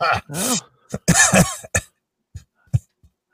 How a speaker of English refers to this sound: What, that I was coughing on air? Yeah. Get away. He was coughing. I have to edit that out of YouTube.